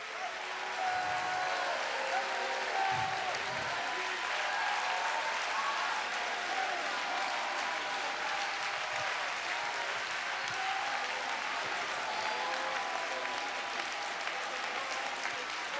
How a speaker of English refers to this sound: Would you one more time clap your hands?